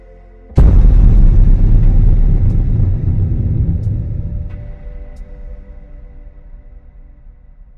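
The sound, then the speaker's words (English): A single sharp, loud crack like thunder bursts out, then rolls into a deep, booming rumble that echoes and slowly fades over several seconds. No voices. “My moment of revelry is broken by a loud noise. It sounds like a crack of thunder, only more echoing.”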